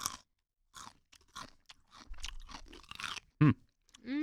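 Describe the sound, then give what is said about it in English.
Loud crunching as someone bites and chews crisp pickle chips, a rapid series of sharp brittle crackles with brief pauses between chews, no talking. “It's definitely super crunchy.”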